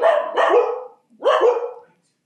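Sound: dogs barking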